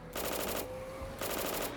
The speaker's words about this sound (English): The American boys chased him in their own vehicle, firing out the window in an attempt to gun him down.